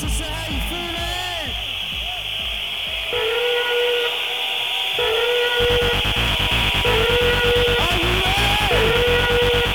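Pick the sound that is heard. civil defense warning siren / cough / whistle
whistle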